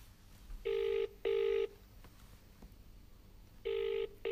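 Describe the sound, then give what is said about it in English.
An outgoing phone call placed from a blocked number rings out with the double-pulse ringing tone: two short buzzy bursts, a pause of about two seconds, then another pair, steady, with no one picking up or talking. “Nobody picks up a blocked number, do they?”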